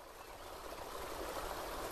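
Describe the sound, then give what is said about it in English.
Steady outdoor ambience beside the Mississippi River, across the water from St. Louis, a continuous broad wash of flowing water at moderate level with no voices and no distinct individual events. “So picture yourself standing right alongside the Mississippi River.”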